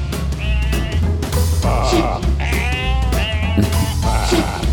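Several sheep bleat loudly and repeatedly, their wavering cries overlapping like a flock, over a steady low rumble with no voices.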